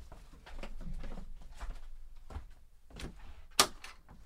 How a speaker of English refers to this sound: Hold on. I'm going to open the door.